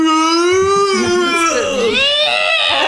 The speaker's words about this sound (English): I mean, there's a little bit of shocks at the end. Like our favorite guy, Josh, who gets killed and screams.